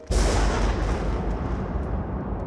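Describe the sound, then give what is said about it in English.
A heavy crack of thunder from a storm that suddenly rolled in at night bursts in and rolls on as a loud, deep, continuous rumble for a couple of seconds, with no voices. “Oh no, looks like a storm suddenly rolled in and now it's super cloudy”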